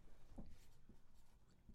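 Quiet scratchy strokes of a pen moving across paper, in short irregular bursts, with faint room noise underneath and no talking.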